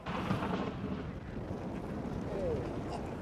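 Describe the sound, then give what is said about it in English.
A deep, continuous rumble of cracking glacier ice rolls on steadily, heavy in the low end and mixed with outdoor wind noise, with no clear separate cracks standing out. “Can you hear the ice cracking over here?”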